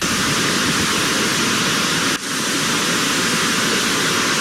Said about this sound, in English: And this is Dauphine Street, New Orleans, right here. No. After a couple of hours of nonstop rain, several feet of water. Yeah. Under 3 feet of water, the street that my hotel was.